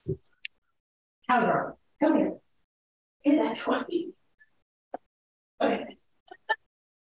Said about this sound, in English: Yeah, so hold on, can you hear that squeaking? My dog is playing with the toy. I can hear that squeaking. Okay, let me go like take that squeaky one away from her real quick.